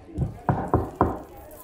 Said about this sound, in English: Rock's just gonna knock on the door.